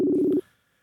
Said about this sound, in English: So I'm going to see if he'll answer the phone.